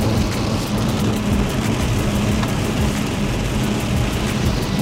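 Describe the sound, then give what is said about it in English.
Steady rain pours down in a dense, continuous hiss with a low rumbling undertone, holding an even loudness throughout with no voices. “Oh, it's raining.”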